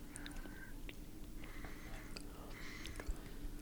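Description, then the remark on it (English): Crisp crunching of a very dry, crunchy snack being chewed, a steady run of brittle bites and grinding with no talking, fairly quiet overall. “It's very crunchy, very dry. Crunchy all the way through.”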